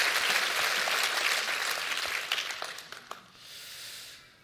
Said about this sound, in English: Why don't you clap your hands one more time? Isn't that a good thing?